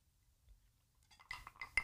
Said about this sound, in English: Okay. I did it backwards. I drank and then I cheers after the drink.